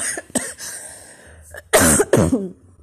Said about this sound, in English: Yeah, that's my cough.